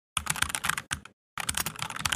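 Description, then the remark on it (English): Rapid, steady fake computer keyboard typing by a virtual customer service representative, clear and clattering in two bursts separated by a brief pause, with no voices. “It's the most insulting, condescending thing that these virtual customer reps do. It's the fake typing.”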